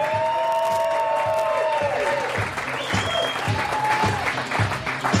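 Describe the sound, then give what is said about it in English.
A loud crowd at CSC Philadelphia, home of comedy sports, cheers and applauds steadily at a live Tony Bruno Show, with dense clapping throughout and high whoops and shouts rising over the noise. “And welcome to CSC Philadelphia, home of comedy sports and the Tony Bruno Show live as the crowd goes wild!”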